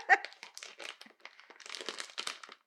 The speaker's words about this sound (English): Have to go with the scissors with this. Don't want to embarrass myself by struggling with the bag too long.